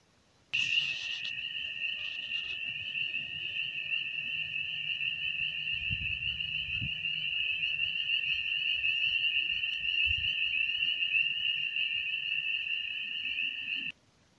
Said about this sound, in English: Spring is quickly approaching here on the homestead, and the frogs are really going at it tonight.